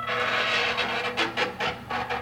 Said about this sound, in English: It also has a door that produced a Hollywood movie quality sound effect, which I was all for.